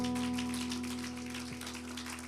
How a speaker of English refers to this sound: Would you clap your hands to the Lord one more time before you're seated?